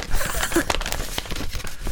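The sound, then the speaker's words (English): A crisp sheet of paper bearing a Big Finish sales report is crinkled and crumpled, giving a steady run of bright, crackly rustles with sharp snaps scattered through, fairly loud and with no talking over it. “It's a nice crisp bit of paper, that, actually.”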